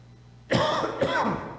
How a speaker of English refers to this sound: Just so you know, when I cough, it's not COVID. I just have a really bad cold that doesn't want to go away.